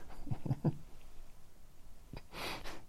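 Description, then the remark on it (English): A male dog gives a quick, breathy sneeze, a sharp hissing burst of air, preceded by a few short, low snuffling snorts. No one speaks. “which even his sneezes are annoying me”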